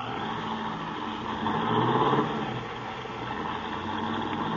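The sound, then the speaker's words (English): A car engine revs up, swelling to a louder roar for a moment before settling into a steady hum as the car pulls away. No voices are heard. “Golly, he's certainly in a hurry. With them brakes the way they are, he'll kill somebody if he ain't careful.”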